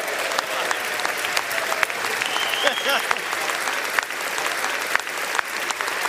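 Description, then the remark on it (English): Members of both political parties in Congress give Congressman Steve Scalise a long, rousing ovation to welcome him back. Sustained, dense applause fills the whole stretch with steady clapping, while the crowd cheers and calls out beneath it. “Members of both political parties welcomed him back to Congress with a rousing ovation, and with good reason.”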